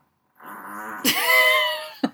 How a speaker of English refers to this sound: We had a lot of beans. We had a lot of beans. There was a big fart. I hope that read.